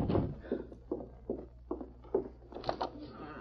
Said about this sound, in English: someone's coming. Look out and see who it is. It's a kid on a white horse. He's stopping here.